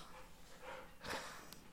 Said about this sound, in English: Oh. I just got jumped on from a wild dog. Now Benson's a wild puppy. I got to get him to the dog park. He just jumped on my stomach. He just leapt over the couch.